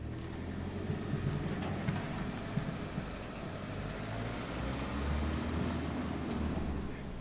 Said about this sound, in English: It's the first sound I hear every morning. The garbage truck going past.